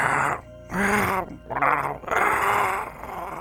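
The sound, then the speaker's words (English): A voice imitates zombie groans, zombies heard echoing from the door area: four drawn-out, guttural moans in a low-pitched growling tone, each separated by a short pause, fairly loud and with no other talk. “maybe because you're closer to where the door area is echoing, you can hear zombies.”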